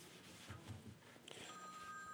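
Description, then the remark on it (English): A telephone starts ringing partway through with a steady, faint electronic tone over a low murmur of background noise; it is an incoming junk call from New Bedford, Massachusetts, left unanswered. “The other, hold on, let me get rid of this phone here.”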